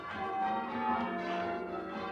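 The bells of Old North Church, rung by bell ringers, sound in a dense, continuous peal, their overlapping tones blending into a steady wash of metallic chimes at an even, moderate loudness, with no voices.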